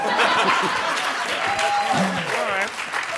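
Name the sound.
audience applause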